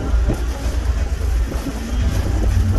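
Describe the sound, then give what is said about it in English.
Steady motor traffic hum with many small moped engines droning and buzzing past on a congested street in Bellanger, a continuous busy street rumble with no talking. “Like I said, a lot of mopeds, and it's not uncommon to see as many as 5 people.”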